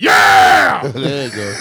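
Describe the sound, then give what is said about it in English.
A person demonstrates the scream they give when their team scores: a loud, high, raspy scream of excitement lasting under a second, then more excited voiced shouting or talking right after. “When they do score, I do scream and clap hands and do, yeah, like everybody, you know, for everybody else.”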